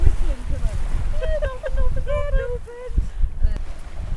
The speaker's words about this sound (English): She's now whistling for them.